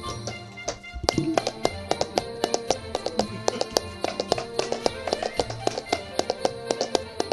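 Paper cups tapped and slapped in a quick, steady rhythm game, a series of sharp, hollow clicks and knocks repeating in a lively pattern for several seconds, with no talking.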